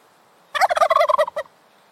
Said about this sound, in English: So, gobble is a word that is very closely associated with turkeys. In the United States, people say that turkeys make the sound, and the sound is gobble.